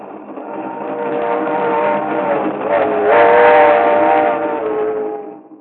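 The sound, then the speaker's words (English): A train to Miami rolls along with a steady, loud mechanical rumble and sustained droning tones layered on top, swelling slightly midway and fading out at the end, with no voices. “But on a train to Miami...”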